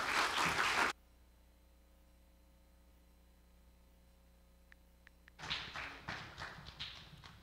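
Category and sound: crowd, audience applause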